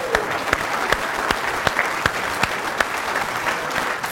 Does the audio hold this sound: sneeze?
no